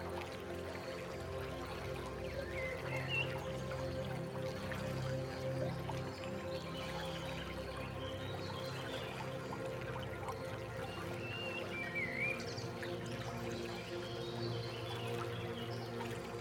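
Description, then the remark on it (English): A steady, continuous rush of flowing water, like a small stream babbling, with faint bird chirps now and then in the background and no talking. “Release them out of you into the flowing water.”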